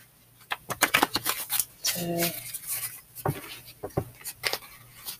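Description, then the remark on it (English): Crisp riffling and snapping of a deck of cards being shuffled, coming in quick bursts of papery clicks and rustles over several seconds, with a brief low hum partway through. “I'm shuffling the cards right now”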